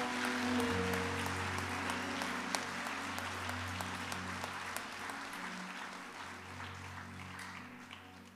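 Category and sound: crowd, audience clapping hands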